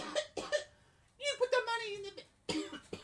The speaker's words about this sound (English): Sorry, it's not COVID. It's just a cough.